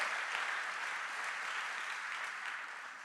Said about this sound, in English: Can we give a good clap to Jesus? Go ahead and take a seat.